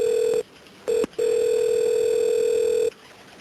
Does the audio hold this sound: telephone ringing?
yes